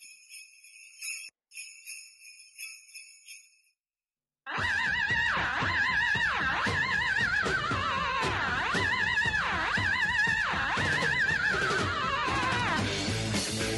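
A loud, driving rock song bursts in after a few seconds of brief high tinkling chimes, its squealing lead line rising and falling like a horse's whinny over dense guitars and drums.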